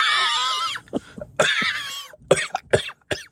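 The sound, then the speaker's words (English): A person mimics a dry, dusty cough: a long raspy wheeze, then a quick series of short, hacking coughs, with no other talking. “By the time they were done that night, David Kellett's penis was just coughing dust when he got off.”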